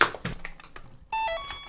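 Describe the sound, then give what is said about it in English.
A short jingle announcing the beginning of a gardening anecdote: a second of loose clattering and tapping, then a bright, sustained musical chord with a high note stepping down to a lower one, played loudly with no talking. “That, of course, is the jingle to announce the beginning of a gardening-based anecdote.”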